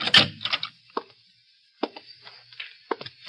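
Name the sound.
door opening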